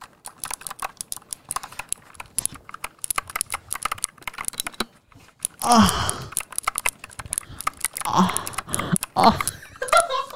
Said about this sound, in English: Why are you pressing on the keyboard? This makes no sense.